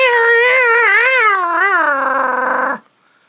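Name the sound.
cat yowling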